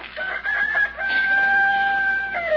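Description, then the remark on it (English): A rooster crows loudly at daylight, a long drawn-out cock-a-doodle-doo with a sustained, wavering high note that trails off at the end, with no voices present. “You've been crowing since daylight.”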